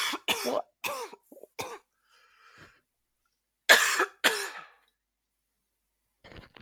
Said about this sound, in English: Sorry, I'm going to take a coughing fit.